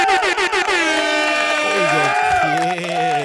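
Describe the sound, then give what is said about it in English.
A loud air horn sound effect blares, opening with a few quick stuttering blasts and then holding a long, wavering, brassy tone for several seconds. “So all the Libras, Scorpios, and the upcoming Sagittarius, round of applause for yourselves. And air horns.”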